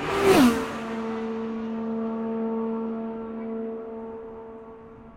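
An IndyCar race car at the 2023 Indianapolis 500 screams past, its engine pitch dropping sharply as it goes by, then a steady high engine drone lingers and slowly fades.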